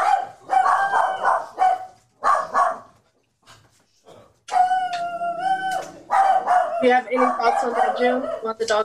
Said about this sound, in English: About the dogs barking? I didn't hear anything. The dogs, I'm sorry, guys. I'm sorry. The dogs, they over there barking their butt off. That's Brooklyn.